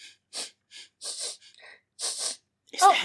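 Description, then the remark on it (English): A person imitates a horse from a movie sniffing like a bloodhound: a quick series of breathy, hissing sniffs in uneven bursts, ending in a louder, rougher snort with a slight voiced tone. “Sniffing. The horse, it smells like a bloodhound.”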